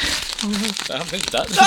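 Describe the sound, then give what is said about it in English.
Paper from a mini printer being crumpled and torn, a brief crackly rustle lasting under two seconds, with muffled voice sounds underneath. “Sorry, the mini printer only has a small amount of paper.”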